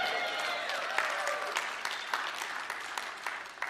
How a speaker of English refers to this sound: Now, my words were real. I hope your clap was real. Those reflect my true heart.